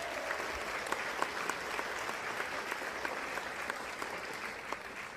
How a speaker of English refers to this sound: First off, round of applause for everybody tuned in to the show, man.